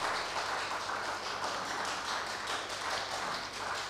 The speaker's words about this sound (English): Can we put our hands together? Amen. At least you didn't preach, so clap for the one that preached.